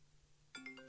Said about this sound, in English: Yeah. Ew, your ringtone sucks. You know what it is? I think it's when I got my new phone, I didn't change it.